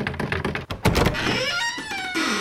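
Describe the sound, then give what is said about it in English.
A heavy postern door thunks open, followed by a long, wavering creak of old hinges as it swings, with no voices around it. “Some rough steps. Good. And a postern door. I wonder.”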